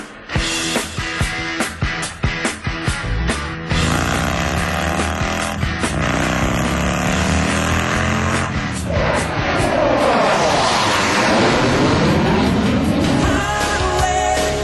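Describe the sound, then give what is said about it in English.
Harley-Davidson motorcycles roar with deep, throaty engine rumble, opening with a burst of revving throttle blips before settling into a sustained, loud, rising drone of several bikes together. “Harley-Davidson just announced plans for its now annual homecoming festival.”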